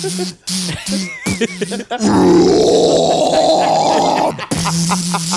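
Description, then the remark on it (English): A person lets out a harsh, metalcore-style vocal growl: a loud, raspy, sustained roar lasting about two seconds, with brief bits of talking just before and after it. “Hey, can you do the growl?”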